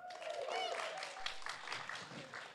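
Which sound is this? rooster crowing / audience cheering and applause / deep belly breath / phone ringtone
audience cheering and applause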